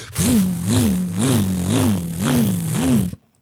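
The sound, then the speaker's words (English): A loud motor revs in quick repeated surges, about six rising-and-falling whines in three seconds over a rough, noisy roar, then cuts off abruptly into silence, like a jet ski engine. “I'd have to move to fucking Mexico. I'm so sorry. In a jet ski.”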